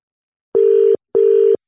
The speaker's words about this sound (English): So I'm making a phone call.